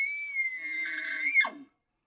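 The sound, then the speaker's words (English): A person imitates a bull elk's bugle calling cows: one sustained high, whistling tone that holds steady, then swoops sharply downward into a short low grunt before cutting off. “So that bull calling cow's bugle would sound something like this.”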